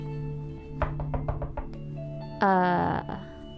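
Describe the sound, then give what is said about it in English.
Someone raps on a front door with a quick run of about seven firm knocks over a steady background hum, followed by a brief, loud tonal burst. “There's a knock at your front door.”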